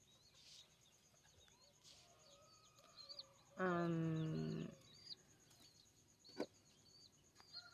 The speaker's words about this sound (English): Get a little ASMR of chickens crowing in the morning. Ducks honking.